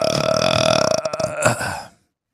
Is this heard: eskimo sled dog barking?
no